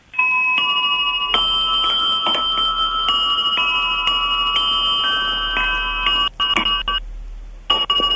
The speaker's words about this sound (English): There's some bells that I inherited from my mother. They must be about 100 years old now. Fantastic. They sound wonderful.